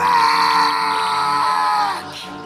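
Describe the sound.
A voice imitates a vampire's piercing, agonized screech as it is stabbed in the chest with a sword, one sustained high-pitched shriek held loud for about two seconds before cutting off abruptly.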